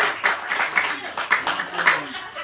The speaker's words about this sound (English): How about a round of applause for our host,